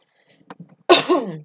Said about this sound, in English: Again, sorry for the cough. We're getting rid of it.